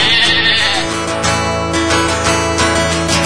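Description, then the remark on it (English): A sheep bleats loudly in a long, wavering cry that runs for a few seconds, with no voices or other sounds around it. “Sheep, sheep, we love sheep, they're one of nature's plenties.”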